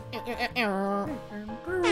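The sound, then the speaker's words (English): A voice imitates an air horn: a loud, blaring tone with a few wavering pitch swoops, lasting under two seconds with no other sound around it. “let's get an air horn in here, I guess.”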